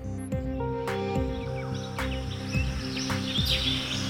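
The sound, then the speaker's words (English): A dense rainforest chorus: steady insect buzzing and droning tones under a stream of repeated shrieking monkey calls, with sliding cries and sharp chirps overlapping throughout. No one speaks. “You know, there are monkeys that are shrieking, and then a little bit of time passes and you can start hearing sort of the bugs come back in, and it's really interesting.”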